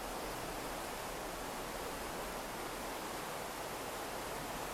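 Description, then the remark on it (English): A steady, unbroken rush of flowing river water, soft but full, with an even hiss and low murmur that never changes. No voices or other sounds. “Let the sound of the river bring you back to the now, to the present moment, back to the space where you are.”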